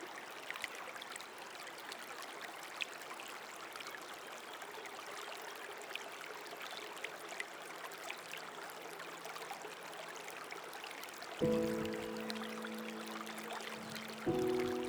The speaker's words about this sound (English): Listening to the relaxing sounds of the gently flowing water as it flows downstream.